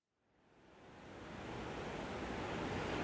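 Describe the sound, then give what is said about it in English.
Ocean waves rush in as a broad, steady roar that swells up from silence over the first second and a half, then holds loud and continuous with no voices. “This is an ocean.”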